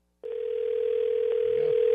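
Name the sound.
outgoing phone call ringing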